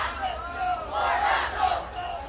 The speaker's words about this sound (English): On this Friday night, supporters of Walker and Warnock gathered outside the doors of a waterfront hotel for the marquee debate of the year.